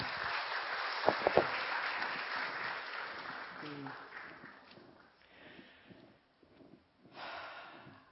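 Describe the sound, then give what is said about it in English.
A room full of people claps, a dense wash of applause that gradually thins and fades out, followed by a brief burst of noisy clapping near the end. “You can applaud, just like on a talk show.”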